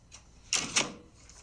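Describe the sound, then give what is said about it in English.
Two quick clunking knocks in close succession, like a door being shut and latching, moderately loud with a faint hiss before and after. “No, but it is a door.”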